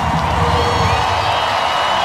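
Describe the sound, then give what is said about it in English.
A large festival crowd roars and cheers as a guest comes out on stage, a dense, continuous wall of sound, loud and steady throughout with scattered whoops rising above the din. “David Attenborough comes out. This is the cheer he gets.”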